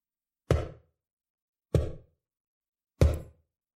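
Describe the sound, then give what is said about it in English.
Three slow, evenly spaced taps of a long fingernail against glass, each a short hard click with a slight dull body, with silence between them and no voices. “Tap, tap, tap. He kept doing it. Slowly, with a long fingernail against the glass.”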